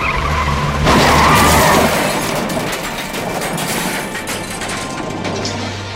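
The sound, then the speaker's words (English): Car tires skid loudly on pavement as a car swerves to avoid a deer in the middle of the road, a harsh screeching surge early on that fades into a sustained rough roar of friction and engine noise, with no one speaking. “Then from out of nowhere, there was a deer in the middle of the road. My mom swerved.”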